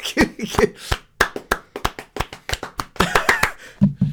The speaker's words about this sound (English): Fuck, that's a round of applause for the Italians. Go on.